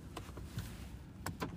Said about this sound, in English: I'm going to lock my doors.